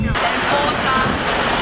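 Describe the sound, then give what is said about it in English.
Rain starting to fall in cold weather, a steady, dense hiss, a continuous wash of patter with no breaks and no distinct voices rising above it. “It's starting to rain, it's cold.”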